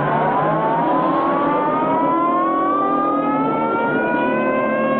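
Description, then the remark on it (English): A police car siren wails loudly and continuously, its pitch slowly climbing, as the police car chases a speeding vehicle through town, over the steady roar of a speeding vehicle's engine, with no voices. “He rides up onto the sidewalk, making pedestrians scatter, and speeds back onto the street past a police car, which starts after them.”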